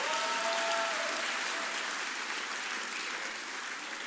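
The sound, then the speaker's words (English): An audience claps hands in a dense, steady burst of applause lasting several seconds, with faint sustained tones underneath at the start and the clapping easing slightly toward the end. “If you can't clap hands, you're a suspect.”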